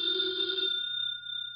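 signal or alarm, telephone bell ringing

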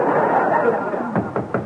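household object, knocking on a door

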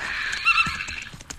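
animal, horse neighing

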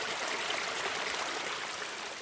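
nature, water trickling

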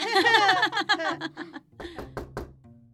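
household object, knocking on a door

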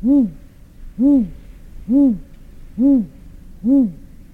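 bird, great gray owl hooting

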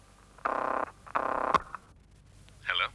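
signal or alarm, telephone ringing

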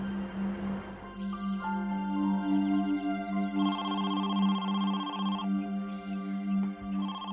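signal or alarm, telephone ringing

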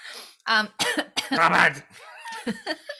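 human body sound, coughing

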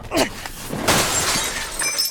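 impact, mirror glass shattering

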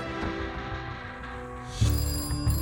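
household object, telephone ringing

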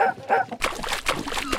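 animal, dog drinking water

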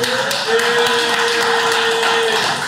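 human body sound, slow clap

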